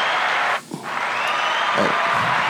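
A round of applause, dense and steady clapping that briefly thins out early on, then continues loud and unbroken to the end, with no one speaking over it.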